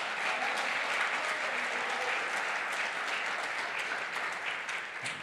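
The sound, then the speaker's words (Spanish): An audience applauds loudly for the Lord, a dense, steady wash of many hands clapping that holds for about five seconds and eases off slightly at the end. “Dale un aplauso fuerte, Señor.”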